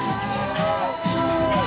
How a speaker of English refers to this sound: Here comes an emergency vehicle. They're cheering for the ambulance.